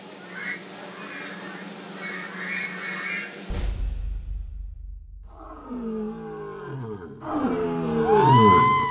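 A lion lets out a series of deep, rumbling growls and roars that swell louder toward the end, powerful, following a stretch of murmuring crowd noise.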